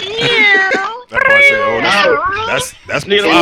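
A cat meows loudly and close by, a run of three or four drawn-out, wavering meows with brief pauses between them, edging toward a yowl.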